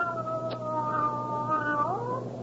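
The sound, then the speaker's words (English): A cat lets out one long, drawn-out meow that holds steady and then bends upward in pitch near the end. It's clear, with no talking over it. “What makes you think she's a male cat?”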